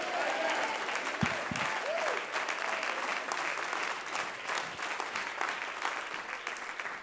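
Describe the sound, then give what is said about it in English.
An audience claps steadily and energetically for several seconds, a dense wash of applause with a few scattered voices calling out over it, clapping and shouting amen during a church service. “Clap your hands and shout amen.”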